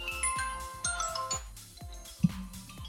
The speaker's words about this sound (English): This one I really liked. Funky. Because this is how naff this is. So you could pick up and be like, hey, you're through to Disco Dave. That's the vibe I got from the funky ringtone.